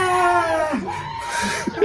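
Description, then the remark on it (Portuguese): A goat screams in a long, strained, wavering bleat that holds steady before breaking into shorter cries near the end, loud and harsh with no talking over it. “Em nosso trenó puxado por duas cabras gigantes, gritalhonas”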